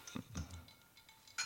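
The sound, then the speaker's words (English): Glasses clink together in a toast across the table: a quick cluster of light, bright taps, then one more crisp chime a moment later, fairly quiet with no talking. “Cheers to across the table.”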